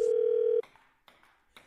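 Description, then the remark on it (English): A phone line rings with a steady electronic tone for about half a second, then cuts off into a few soft clicks and rustles as the call is picked up. Nobody speaks. “It's your phone tap right now. It's another phone tap.”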